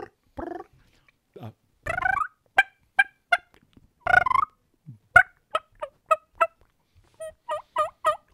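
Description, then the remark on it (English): A mouth diaphragm call imitates a turkey: a string of close, sharp yelps and clucks in uneven bursts, ending with a quicker run of rising calls, with no talking over it. “And ironically enough, there are some turkeys out there that will go absolutely nuts over a mouth diaphragm call.”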